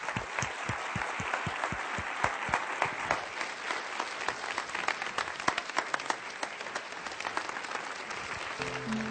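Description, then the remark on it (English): A crowd applauds steadily for about nine seconds as applause to God, a dense wash of clapping that starts with a brief rhythmic beat before breaking into full, sustained applause. “would you just join me in a second and let's just let a bunch of sticks give some applause to God, because God is really the one who's behind all this.”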